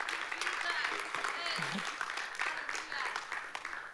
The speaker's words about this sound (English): Now take those hands and begin to put them together and scare the enemy off. Scare the enemy off.